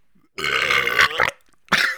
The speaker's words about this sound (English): was that just you, or did the two of you burp in unison?